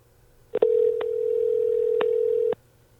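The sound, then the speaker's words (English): A single steady ringing tone from an outgoing phone call lasts about two seconds, clear, with a few faint clicks on the line and no voices. “Should we call him? Do we have a way of calling him?”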